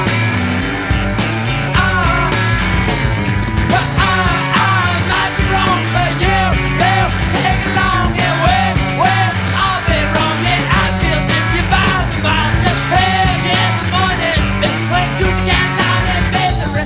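A loud rock song with a male singer screaming and straining over driving drums and guitars, the raw vocal sustained and wavering for the whole stretch.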